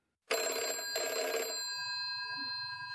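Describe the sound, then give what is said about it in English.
A telephone bell rings loudly in two quick rattling bursts, then its metallic tone lingers and slowly fades. No voices are present. “Zoe, somewhat relieved, rushes to the phone, and this is when her horror begins”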